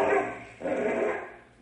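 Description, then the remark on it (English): A dog named Bim barks and snarls ferociously while fighting a rattlesnake, in two long, rough bursts separated by a brief pause, loud, with no voices. “The rattler sees Bim. They're going to fight.”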